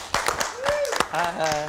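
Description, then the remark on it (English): A thin smattering of applause welcoming Oscar-nominated actor Steven Yeun, a few scattered claps with no steady rhythm, moderately loud, while voices call out and talk over the clapping. “I love that you're Oscar nominated and you get a smattering of applause.”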